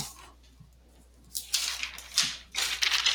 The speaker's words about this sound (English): Yeah, that's him dipping into the mailbag. Shuffling through papers here.